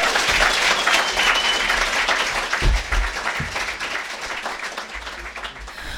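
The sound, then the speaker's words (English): A crowd in Timaru applauds steadily for several seconds for two guests from Counterspin Media, a dense wash of many hands clapping at once, loud and sustained, with a couple of low thumps partway through and no voices. “All right, team, could we please get a big round of applause for Calvin Alp and Hannah Schmidt from Counterspin Media.”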